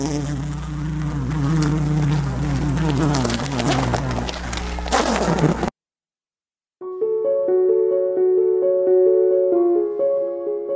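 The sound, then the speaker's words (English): Dense honeybee buzzing from inside a hive as a bee performs the waggle dance to tell other bees where flowers with nectar are, a loud steady drone with pulsing harmonics, breaks off into a second of silence, then returns as a thinner, tonal hum with shifting pitches. “This is the waggle dance. That's the buzzing sound that Ariel was hearing inside the hive.”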